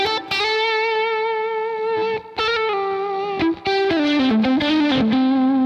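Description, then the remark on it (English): A distorted electric guitar plays a sustained lead solo line with bends and slides, with reverb switched on, loud with no voices. “So now, I've got that reverb on. I'm in this middle position right here. And that sounds pretty nice, okay?”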